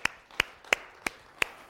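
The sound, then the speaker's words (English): Slow, sparse handclapping: six sharp claps spaced about a third of a second apart, steady and rather soft, with no voices over them. “That was a weak clap.”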